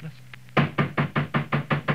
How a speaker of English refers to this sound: A few minutes later, there was another knock at the door.